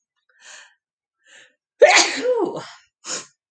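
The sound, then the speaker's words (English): Two quick breathy intakes, then a loud sneeze that trails off, followed by a short sharp sniff-like burst. No talking. “And I might sneeze.”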